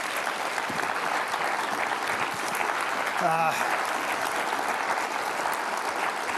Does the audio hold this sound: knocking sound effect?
no